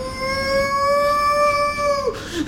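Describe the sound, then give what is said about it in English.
A voice imitates a dying dog's keening cry: one long, steady, high-pitched wail held for about two seconds, then breaking off into a short, wavering whimper at the end. It's fairly loud, with no talking. “when he cries, he doesn't really cry, he just sort of does this sort of like a dying dog kind of sort of noise. A keen.”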